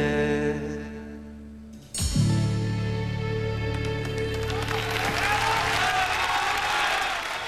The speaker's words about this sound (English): Sighs of relief from Rai, and a rapturous round of applause from the Italian crowd.